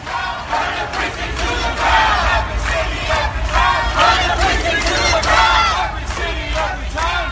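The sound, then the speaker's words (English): A crowd of BLM protesters, as at protests in Rochester, Pittsburgh and Washington, curses, shouts and screams continuously, many overlapping voices rising and falling in loud waves with no pause, a steady low rumble beneath the clamor. “Have you seen the BLM protests in Rochester and Pittsburgh and Washington where they curse and scream, bullhorns come over, overturn the tables, scream at people?”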